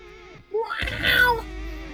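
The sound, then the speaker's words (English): A man lets out a drawn-out, wavering yowl imitating a cat in heat, rising into a loud strained cry before trailing off, unaccompanied by speech. “He sounds more and more like a cat in heat every single week.”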